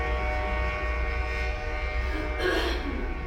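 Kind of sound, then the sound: vehicle, train horn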